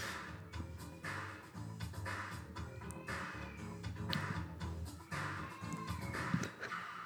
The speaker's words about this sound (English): I really hope people can hear the cat over the mic. Yes, we're not hoarding a small child and torturing them. It's just an old cat screaming. We're also not torturing the cat.